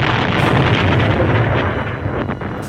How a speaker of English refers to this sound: Small, hand-sized missiles, which the Atlanteans fail to notice when Doom grabs the two missiles and bangs them together, and they explode.